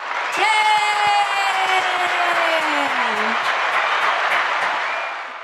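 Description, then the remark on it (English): A studio audience applauds steadily for several seconds as a guest is welcomed onto a TV show, the clapping loud, while a voice lets out a long, falling whoop of cheering near the start. “Goodness, round of applause really for the Lord.”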